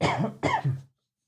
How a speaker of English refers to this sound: No, that was not a... That was a cough.